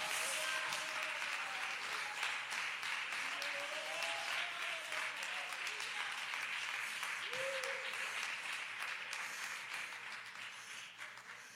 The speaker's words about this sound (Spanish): dele palmas al Señor.